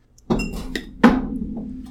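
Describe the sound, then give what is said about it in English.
Two bright clinks of shot glasses about three quarters of a second apart, fairly loud, each with a short ringing tail, as the glasses are tapped together in a toast before drinking shots. “Yeah, cheers, that's a good idea. Let's take these shots.”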